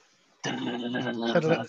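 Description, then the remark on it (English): After a brief pause, a voice bursts into a loud, continuous, buzzing vocal imitation of blast beat drumming with a machine-gun-like rhythm, held steadily for just over a second. “You got the blast beat drumming, like I said before. It's got that sort of machine gun rhythm where it's just going like...”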